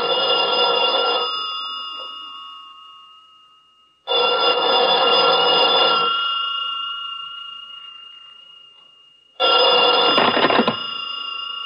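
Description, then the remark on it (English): An old-fashioned telephone bell rings in three loud, clanging bursts, each ringing out for a moment before fading, with pauses between them and no voices. “I'm sorry, but he can't come to the phone right now.”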